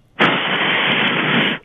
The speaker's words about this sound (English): Could you do me a quick favor? Sure. Just blow into your phone real hard for me real quick. Like, could you do that? Yeah, okay.